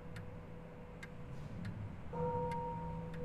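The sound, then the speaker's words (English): A clock ticks steadily and softly, then a sustained chime tone rings in about two-thirds through as the clock strikes quarter past the hour, humming on beneath the continuing ticks. No voices. “The quarter was so long that he was once more convinced he must have sunk into a doze unconsciously and missed the clock.”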